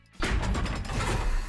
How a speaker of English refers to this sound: Wow! A trap door!